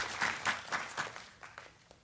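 Brief applause: a steady run of hand claps that soon thins out and fades over about two seconds, fairly quiet and distant, with no voices.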